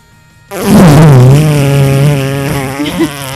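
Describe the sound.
A loud, sustained mouth-made fart noise heard over Skype, a buzzing lip raspberry that starts abruptly and drones for about three seconds with a slightly wavering pitch, voiced alone with no talking.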